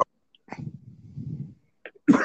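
Coughing with no talking: a brief burst, a long low rough rumble through the throat, then a sudden loud explosive cough at the end.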